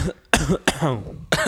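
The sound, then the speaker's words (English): Three sharp coughs from one person, the middle one trailing into a rough, throaty rasp, with brief pauses between them and no talking. “Just cut it. And you cough, and then I'll ask.”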